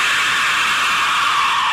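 An Aztec death whistle lets out a loud, harsh, breathy scream, a steady hissing shriek held without a break for nearly two seconds, with no voices over it.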